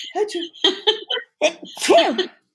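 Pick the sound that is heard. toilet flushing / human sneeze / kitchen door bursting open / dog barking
human sneeze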